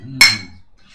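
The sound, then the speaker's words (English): A single bright clink of glasses touching in a toast, fairly loud, with a short ringing tone that fades within half a second. “Cheers. Yeah, go on. We can do this here. Are you drinking? Yeah, of course.”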